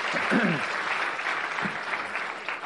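Audience applause: a dense, steady patter of many hands clapping at an even level throughout, with a brief murmur of voices early on underneath.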